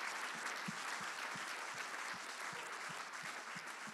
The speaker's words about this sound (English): Give her an all-round of applause. That was fantastic.